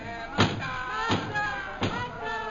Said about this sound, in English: Stop that pounding and go away.